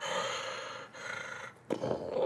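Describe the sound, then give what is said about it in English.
A voice imitates heavy, rasping animal breathing: three or four loud, growly breaths in a row with brief pauses between them, and no other talking. “You don't hear a baying, but up on the right-hand side, like, up this kind of, like, maybe, like, 30, 40 feet embankment up onto this part of this valley, you hear paws scrabbling through dirt, and you hear just heavy breathing, like...”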